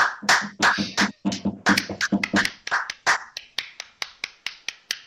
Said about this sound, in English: Round of applause for Glenelg, everyone.